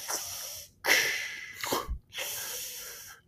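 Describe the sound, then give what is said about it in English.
A person imitates heavy, mechanical respirator breathing: loud, hissing inhales and exhales in a slow, steady rhythm, with brief silent pauses between breaths and no talking. “breathe like Darth Vader for the rest of your life”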